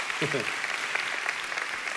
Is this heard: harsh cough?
no